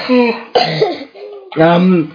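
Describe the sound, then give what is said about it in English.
A few harsh coughs break out in quick succession at home, mixed in with bits of voiced sound from someone speaking, all fairly loud. “Sorry, that cough is still hanging around here at home.”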